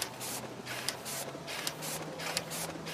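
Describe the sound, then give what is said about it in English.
A printing press runs in a steady mechanical rhythm, with regular bright swishing strokes about every third of a second over a constant low hum, moderately loud, with no voices. “All my life as a printer, I was thinking about maybe I should drum with a machine, you know.”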